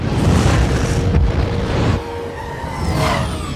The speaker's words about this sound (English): Things were exploding, people were yelling. You know, the usual superhero stuff.